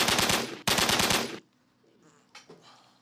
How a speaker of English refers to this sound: Hold up. You got to get the gunshots off.